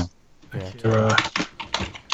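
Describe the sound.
Clacky keys on a loud computer keyboard, a few sharp, uneven clicks, mixed in with a voice talking over them.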